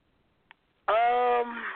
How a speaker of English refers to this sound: You are breaking up